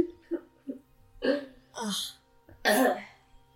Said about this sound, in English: my belch.